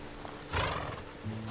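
A horse whinnies loudly, a shaky, quavering neigh lasting about a second, followed by a low rumbling snort at the end. No one speaks.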